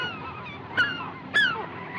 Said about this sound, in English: The birds. The birds!